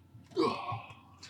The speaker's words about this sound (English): About the sneezes. Damn, bro, you good?